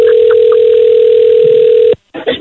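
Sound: outgoing phone call ringing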